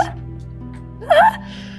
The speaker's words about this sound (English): Bless you. Bless you. Damn. You should enter the Guinness World Records for speed sneezing. I might win. My record is 10. Like 10 in a row that quickly?